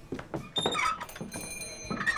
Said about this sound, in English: The door squealed as the young men entered the Oriental Saloon.